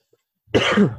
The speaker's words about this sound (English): I'm sorry for coughing and taking breaks like that, but like I said, when you're talking for an hour by yourself, you have to kind of take breaks to drink water.